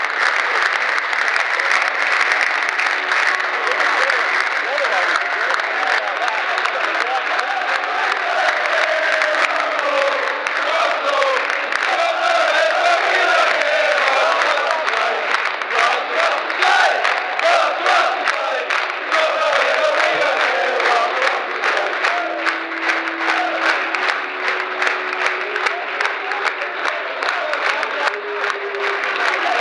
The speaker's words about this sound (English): But Russell Slade is going round and thanking each player individually as the players now come over to the stand that we're all in and clapping us.